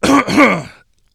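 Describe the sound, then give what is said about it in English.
A short throat-clearing cough in two quick rasping bursts, loud and harsh, then silence. “even if it's a little cough to clear my throat”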